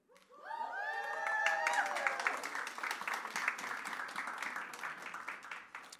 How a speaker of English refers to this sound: And you're clapping for her, and some of you don't even know who it is yet.